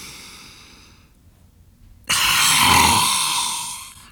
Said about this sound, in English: Just take a deep breath in, hold it there for a second, and on the way out, stick out your tongue and, make some weird noises.